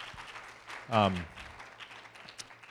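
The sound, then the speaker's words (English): An audience applauding the people on stage, a steady, fairly soft patter of many hands that runs the whole time, with one brief, louder voice rising over it near the start. “And so I'm delighted to be here with them, and I want to give them an applause.”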